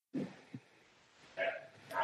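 A few short, muffled shouts from a person somewhere in the background, faint and distant, coming in brief bursts with quiet gaps between them.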